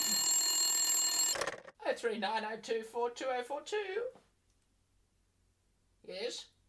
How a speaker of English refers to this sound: Oh, that'll be the phone. Oh, hang on a minute. Hold on a minute.